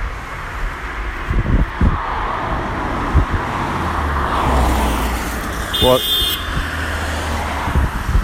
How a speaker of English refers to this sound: Almost a car crash. Jeez, it doesn't feel safe around here today, you know?